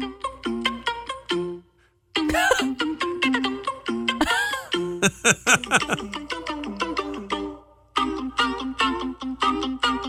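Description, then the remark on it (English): Several singing voices imitate phone ringtones, chirping quick, stepping melodic figures in bright, clipped notes, pausing briefly, then layering busier overlapping jingles before returning to the steady repeating pattern. “They also can imitate sounds, for example, the sounds your phone makes.”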